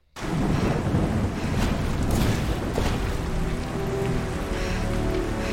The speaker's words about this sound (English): Because she's soaking wet. The dog is soaking wet. It's yeah. raining.